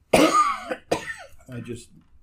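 A loud cough comes in two harsh bursts, followed by a softer rasping throat sound as the coughing trails off.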